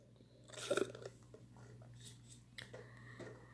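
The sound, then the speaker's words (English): A brief sip of water: a short wet slurp near the start followed by a few soft mouth clicks and swallowing noises, quiet over a faint steady hum, with no talking. “Had to get a sip of water.”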